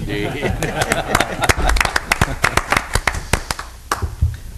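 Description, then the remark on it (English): Scattered applause from an airport commission meeting audience: a few people clapping in uneven, sharp bursts that thin out toward the end, with faint murmuring voices underneath. “I think a little bit of applause would be.”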